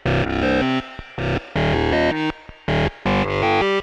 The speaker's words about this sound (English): So now I've got our Game Boy sample going into the Dopefer A124 Wasp filter. And then I've got it going into the Desmodus Versio just for a little subtle reverb.